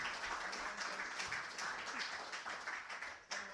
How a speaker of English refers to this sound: Give the poet a round of applause, guys. All right, come on. Woo.